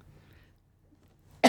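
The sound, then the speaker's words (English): Near silence with a faint low hum, then a sudden loud, harsh cough bursts in at the very end and is cut off. “Are you okay? Are you starting out with 2 packs a day already?”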